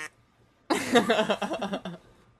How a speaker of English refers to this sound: You've never heard a can of cow? I've never heard a can of cow. It's a cow in a can. Yeah. It sounds a lot more like a car running over a goat. It sort of sounds like a bleeding goat.